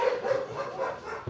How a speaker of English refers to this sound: Goddamn dogs.